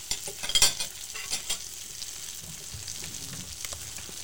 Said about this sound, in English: I'll let that sizzle for a minute.